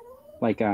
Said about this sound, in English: what are you doing to that dog?